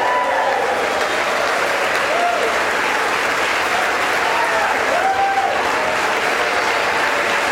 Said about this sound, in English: There's applause right now going on for Congressman Mike Johnson as the Speaker pro tem, Patrick McHenry, is reading. The applause and the continues.